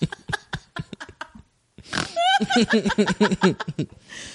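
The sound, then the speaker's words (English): A human voice imitates a pig, giving a run of rhythmic snorting grunts, starting with short choppy bursts, then a brief pause and a longer series of throaty, squealing oinks. “I learned this from the pigs.”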